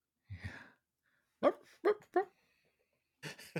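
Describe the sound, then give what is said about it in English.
A person imitates a dog with three quick, loud, voiced barks in a row, bracketed by brief breathy vocal sounds before and after. “He's like, bark.”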